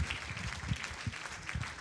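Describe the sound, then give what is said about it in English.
An audience at an evening church service claps their hands for the Lord in a steady, dense wash of applause that holds at an even level throughout, with a few low murmurs or calls rising briefly underneath. “Would you give the Lord a hand clap this evening?”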